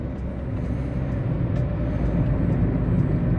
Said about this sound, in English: Sorry if I'm stopping and starting. It's just concentrating on the road. There's a lot of traffic at the moment